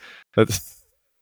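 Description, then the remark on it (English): A person briefly imitates a tiger's growl up close: a soft breath, then a short, rough voiced rumble that trails off into a breathy hiss, all within about a second. “That's like a tiger.”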